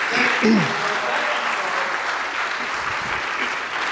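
A crowd applauds steadily for about four seconds after a performance on a double-neck guitar, a dense, even wash of clapping at a fairly loud level, with a brief vocal sound or cheer near the start.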